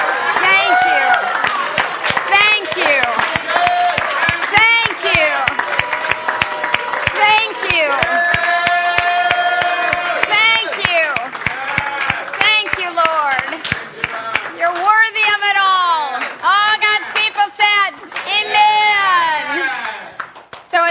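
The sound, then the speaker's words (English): An audience claps steadily and loudly while many voices shout and cheer together unto God in worship, standing as Psalm 48 bids them clap their hands; the sharp hand claps rise through a dense, energetic wall of crowd noise that carries on throughout. “Clap your hands, all you people. Let's shout unto God with a voice of triumph.”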